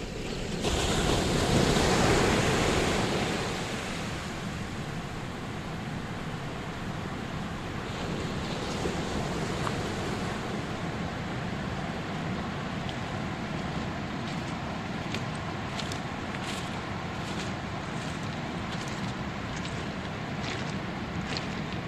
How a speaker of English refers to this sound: Behind us there's a surf beach, a marvellous surf beach, miles of it